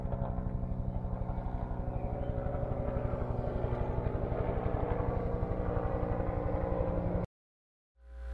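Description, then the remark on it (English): A helicopter's rotor blades thump in a steady, rapid rhythm overhead, loud and continuous with a low engine drone, then cut off abruptly to silence near the end. “And above you, you can hear the blades of a helicopter whirl.”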